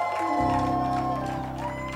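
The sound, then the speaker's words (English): A church audience at a morning service shouts and cheers in a loud, continuous roar when asked to shout, with sustained organ chords swelling in underneath about halfway through the first second. “Oh, can I get some people to shout this morning? They shouted.”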